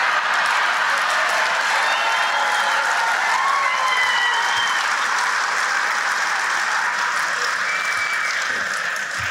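Sustained audience applause, a dense wash of many hands clapping at a steady loud level for the full stretch, with faint crowd voices mixed into the noise.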